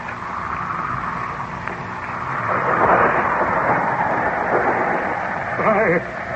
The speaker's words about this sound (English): The storm is increasing again. It sounds almost as if the voice of the heavens is protesting.